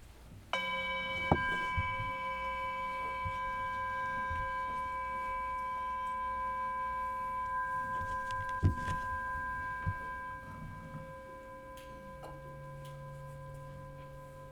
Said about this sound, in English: You will hear this chime multiple times at the beginning of each session, I presume in the afternoons as well as the morning. I invite you to respond when you hear the chime.